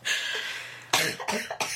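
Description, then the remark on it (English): A person coughs three times in quick succession, fairly loud, after a drawn-out breathy exhale. There is no talking. “Sorry for my coughing.”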